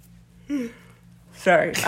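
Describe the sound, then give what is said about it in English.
A voiced yawn that swells loudly near the end, after a short, softer vocal sound earlier, with a low steady hum underneath. “I should take over and you yawn.”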